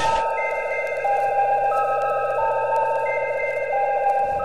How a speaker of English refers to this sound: You will know it is time to listen when you hear the chime like this.